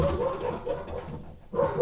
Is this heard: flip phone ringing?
no